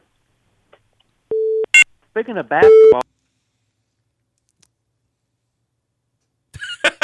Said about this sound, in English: Phones are dead. The phones are dead. Yep. All right. No more phone calls.